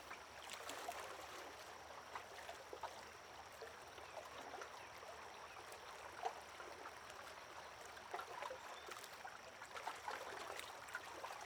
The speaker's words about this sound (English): Embraced by the mysteries of nature, you surrender to the sound of the river's soft lapping.